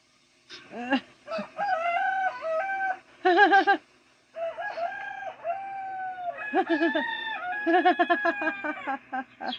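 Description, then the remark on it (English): A bird calls loudly, with a run of squawking, drawn-out cries and short clucking bursts that repeat almost continuously for about ten seconds, with no talking. “The bird finally just like went up to the cat's face and like it's amazing.”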